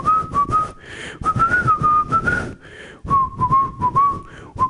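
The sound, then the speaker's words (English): Someone whistles a wavering tune in three short phrases with brief pauses between them, clear, over a rough, noisy background texture. “This is going to be hard, but all of a sudden, you just hear him whistling.”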